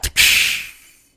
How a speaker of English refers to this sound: The whip's metallic tip fails to connect. Your restraints keep you from achieving the needed distance. The sound, however, causes the guard to stir.